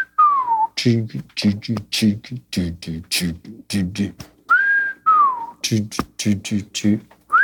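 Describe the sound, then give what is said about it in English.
A wolf-whistle style melody: a few sliding whistled notes that swoop up and then fall, clear, interspersed with quick, choppy voiced sounds. “like a wolf whistle kind of thing.”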